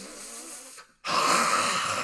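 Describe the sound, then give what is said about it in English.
A steady breathy rush, then a brief silent pause before a loud, drawn-out exhale, a heavy satisfied sigh of breath pushed out after a big gulp of a drink. “Like, I don't gain anything from drinking and then breathing out heavily and being like...”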